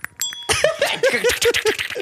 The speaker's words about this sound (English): Can you reach the bell? Oh, yeah. Our falling apart bell.